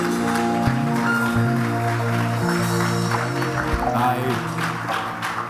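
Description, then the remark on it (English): An audience claps steadily in a dense, continuous patter that runs the whole way through, mixed with sustained musical tones and voices, giving the Lord a clap offering. “Give the Lord a good clap offering wherever you are.”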